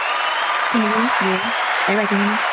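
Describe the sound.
Steady, dense applause fills the whole stretch at an even level, while a few short voiced calls rise over it in two brief bursts.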